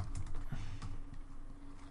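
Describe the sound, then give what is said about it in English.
Rapid keystrokes clatter on a computer keyboard as someone types a web search query, a quick irregular run of clicks with no voices. “I'm typing how many Jews are there into Google”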